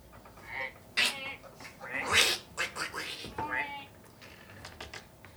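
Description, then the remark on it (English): A person imitates ducks with a quick, irregular run of nasal, honking quacks, moderately loud, with no other sounds around them. “But the ducks are back.”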